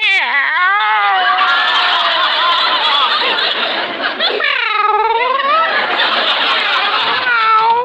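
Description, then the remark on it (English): A man's voice imitates cat meows, a loud run of drawn-out, wavering mews following one another almost without pause, some overlapping, across the whole stretch. “Meow. Meow. This one loves to be petted. Meow. So does this one, for that matter.”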